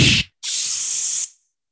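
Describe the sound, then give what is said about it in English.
Two sharp hisses as coffee drips onto the hot burner of a coffee maker when the pot is pulled out: a short burst, a brief gap, then a longer steady hiss of about a second that fades out. No talking. “Every single coffee pot I've ever had that's a no drip or whatever, every time I pull that pot out, it drips right on the burner.”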